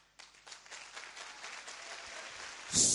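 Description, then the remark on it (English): An audience at a prophetic church meeting claps together on a prophet's instruction, a dense, crackling patter of many hands that holds steady, then swells into a louder burst at the very end. No one speaks. “For example, a prophet can say, clap.”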